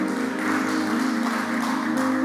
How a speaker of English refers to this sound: Give the Lord a good clap offering, someone.